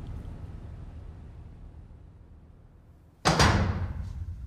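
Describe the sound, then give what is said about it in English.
A heavy cell door slams shut and is locked, a single loud, sharp bang that rings out and decays, following a few seconds of low, rumbling room tone with no voices. “The cell door was slammed shut behind me and locked.”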